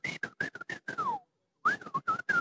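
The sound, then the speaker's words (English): Breathy whistling: a quick run of short, choppy whistled notes, a pause, then another burst of notes rising and falling, like a signal whistle. “Some of them, they used to stand behind a wall. Then they'll whistle.”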